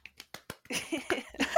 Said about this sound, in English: We're actually clapping ourselves. Of course, someone has to.